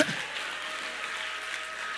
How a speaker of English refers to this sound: Anybody ready for an easy and light life? Clap your hands if you're ready for it.